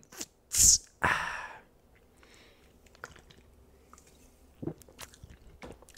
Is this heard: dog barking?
no